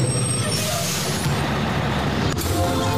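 The air brake of the NBA 75th hoop bus hisses with a steady, loud release of air over a low idling engine rumble, with a brief sharp transient near the end.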